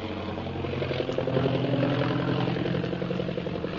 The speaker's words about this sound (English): Meanwhile, Shanghai Lil's plane carrying Jungle Jim and Kolo zooms over the city of Shanghai, circling around in the impenetrable fog.